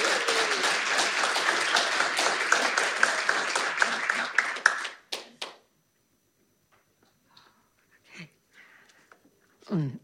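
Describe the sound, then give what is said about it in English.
An audience claps to welcome a speaker, a dense, loud burst of steady applause lasting several seconds, then it fades into a few stray claps and quiet shuffling noises. “I would be really happy if you didn't clap.”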